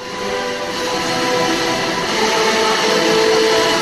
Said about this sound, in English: This is the world record attempt for the largest kazoo ensemble. Nice. It was on BBC Radio.